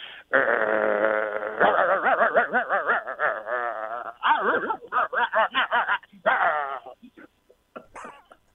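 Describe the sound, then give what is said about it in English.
A man's voice imitates an aggressive dog, snarling and growling in harsh, pitched bursts before a string of choppy barks, loud, ending with a few faint laughs. “Okay, you're going to bark like an aggressive dog.”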